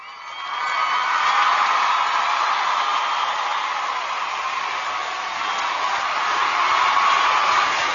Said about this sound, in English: And even if nobody else is thanking them throughout the week, each week here at Channel Mom, we give them a standing ovation.